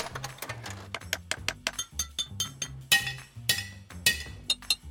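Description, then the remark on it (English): Rapid, repeated tapping and clinking strikes from a tiny hammer, sharp and bright, over a bouncy low bassline, with a few louder crashing hits near the end. “You are good at hammering!”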